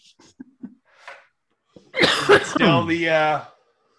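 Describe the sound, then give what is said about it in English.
A few faint, scattered small noises, then a single loud cough from a person looking at a bowl before taking a hit; it turns harsh and voiced, lasting about a second and a half before fading out. “Where'd that cough come from?”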